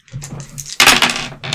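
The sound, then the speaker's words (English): Several dice drop and clatter onto a surface, with a burst of bright rattling impacts in the middle followed by a few scattered taps, fairly loud. “You dropped all our dice.”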